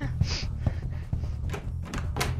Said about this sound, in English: I'll get the door.